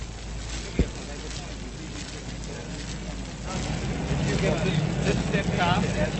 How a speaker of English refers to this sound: The location of the recording isn't given, but it's outdoors and there's traffic noise in the background.